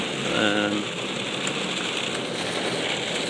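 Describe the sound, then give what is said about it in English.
Heavy rain drums steadily on a car being driven, a dense, loud hiss filling the whole stretch, with a brief voice heard faintly at the very start. “Sorry, it's really raining.”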